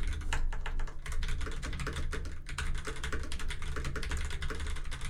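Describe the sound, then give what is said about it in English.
Rapid, steady computer keyboard typing of a web search fills the whole stretch, a dense run of crisp key clicks with a low hum underneath and no voices. “Damn, I'm so good at typing. Yeah, sure, that didn't backspace once.”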